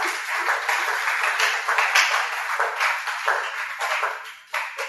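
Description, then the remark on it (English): An audience claps their two hands together during a sermon on tithing to show they understand, a dense, continuous patter of many claps filling the space for several seconds before tapering briefly near the end. “Clap your two hands if you understand.”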